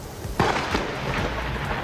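thunder rumbling

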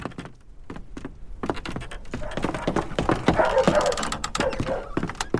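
puppies barking and whimpering

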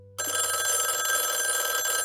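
telephone bell ringing

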